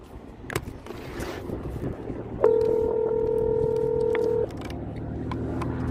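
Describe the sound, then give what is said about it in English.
A single two-second telephone ringback tone sounds over a phone line as a call is placed that goes unanswered, a steady, fairly loud electronic buzz-tone that starts abruptly and cuts off, with low background rumble around it. “Let me get him on the phone, man. It's ringing. It's ringing right now.”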